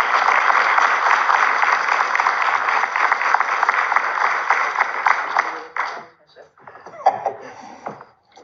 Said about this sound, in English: Ladies and gentlemen, please, your warmest round of applause for the afternoon